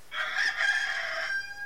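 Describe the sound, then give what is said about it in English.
A rooster lets out a single loud cock-a-doodle-doo, a bright, harmonically rich crow lasting just over a second and ending in a held, slightly falling note. “has, as my grandpa used to say, cashed in his chips, croaked, sayonara, died, deceased, no more, made his last cock-a-doodle-doo.”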